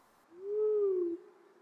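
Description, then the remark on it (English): A single owl hoot in a forest, a smooth, low, drawn-out note lasting under a second that sags slightly in pitch at the end, clear against a quiet background. “Unexpectedly, the owl hoots.”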